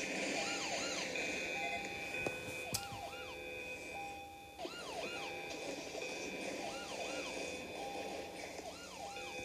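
An electronic alarm blares steadily, its tone repeatedly rising and cutting off in a quick on-off cycle, loud and continuous over a low background rumble, with no one talking.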